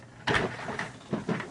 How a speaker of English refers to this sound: But, your chair's really squeaky. Yeah, I got to get out of this chair. Yeah. It's freaking me out, to be honest. It's just doing a lot of squeaking.